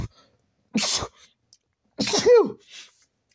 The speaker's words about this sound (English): Ooh, sneezed. Excuse me.